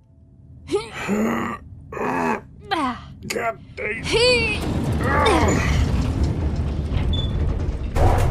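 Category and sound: household object, door opening or closing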